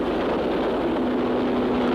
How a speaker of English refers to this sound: Oh, the planes pounce upon the submarine. He wasn't done. Before it can submerge.